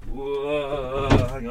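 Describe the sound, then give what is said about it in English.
A door or window being opened early in the morning, with a drawn-out wavering creak followed by a brief knock or thud as it swings free. “I'm just going to open some windows and doors because I need some fresh air as well.”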